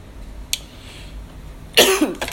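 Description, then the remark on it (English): A sudden, harsh cough from someone smoking out of Raw rolling papers bursts out, followed by a smaller second cough, after a faint click. There is no talking, just quiet background noise. “I always cough a lot when I smoke out of raw papers.”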